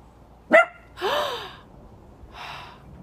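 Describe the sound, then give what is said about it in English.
A female dog lying down gives a sharp bark, then a longer, rougher bark-like yelp, followed by a soft breathy huff, with no talking. “She's just laying there barking.”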